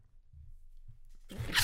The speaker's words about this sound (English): Bro! I was about to get so mad if you would have sneezed on my face.